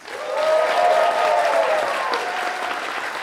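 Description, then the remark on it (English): Sustained audience applause for Kevin Eastman at an IDW Publishing Teenage Mutant Ninja Turtles comics panel, loud and steady for about three seconds, a dense wash of clapping with faint cheering mixed in, easing slightly toward the end. “So let's keep that applause going for Kevin Eastman.”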